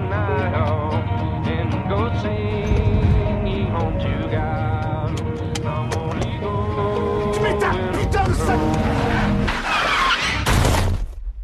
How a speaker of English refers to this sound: Finally, he snaps, turns to yell at Alexia and crashes the car.